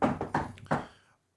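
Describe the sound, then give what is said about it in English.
Three dull knocks on wood in a steady, evenly spaced rhythm, each a hollow thud with a short resonant tail that fades out after the last one. “Knock on wood.”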